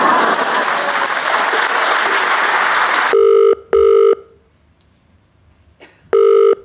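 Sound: telephone ringing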